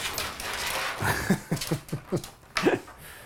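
A New York City dog, just back from a walk, laps a person's water in a quick series of wet, rhythmic slurps over a steady background hiss, with one louder splashy lap near the end.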